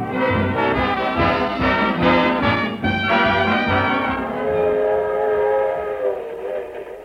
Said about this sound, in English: A suburban railroad station. 2 men go into the smoking car.